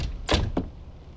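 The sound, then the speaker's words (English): A door is pushed shut: a brief sweeping rush followed a moment later by a second, softer knock as it settles closed, with no voices. “Close the door.”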